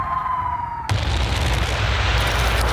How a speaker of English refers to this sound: And the shell hit, but wasn't immediately blown to hell, rained down onto our heads.